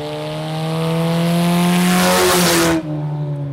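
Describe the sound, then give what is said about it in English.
The engine of a white 2006 Cobalt race car numbered 99, driven by a 15-year-old at Ona Speedway, roars, revving higher as it accelerates with a rising whine, then abruptly eases off and settles into a lower rumble. No one speaks. “Cole, who drives a white 2006 Cobalt sporting the number 99, has just embarked on his own racing career.”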